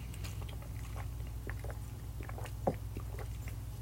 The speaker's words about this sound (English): That's me drinking water. It's me taking my vitamins and stuff.